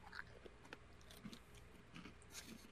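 Someone munches crunchy chips close to the mic: a quiet, irregular run of crackly bites and chews over a few seconds, with no talking.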